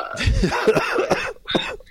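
A harsh cough with a raspy, throaty quality, a few rough bursts in quick succession followed by one more short hack after a brief pause.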